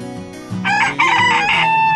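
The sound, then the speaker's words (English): A young rooster, a new little rooster at the Happy Hens Farm, crows once, a loud, strained cock-a-doodle-doo with a rough, slightly broken call that fills the moment with no talking. “Oh, I was hoping he was going to do that. That's our new little rooster.”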